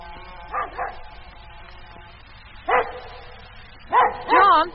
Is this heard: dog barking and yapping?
yes